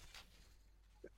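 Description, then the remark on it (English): A single quick sneeze bursts out near the start, a short breathy hiss that fades fast into quiet, followed by a faint click near the end. “Bless you.”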